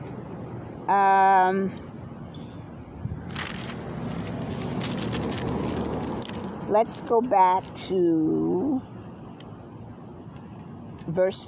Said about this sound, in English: Okay, I just want to say for a few seconds, you're going to probably hear some cars and people. We are out in the community today. And so, just so that you know, that's what the noise is.